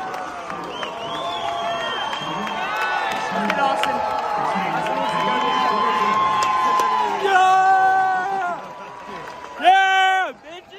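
A baseball stadium crowd cheers loudly and continuously as the team comes back to win 5-4 in the bottom of the ninth inning, full of overlapping shouts and high whoops, then briefly dips before one last loud, sweeping whoop rises over the roar.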